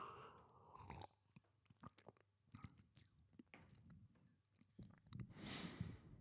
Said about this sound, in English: Let me take a sip.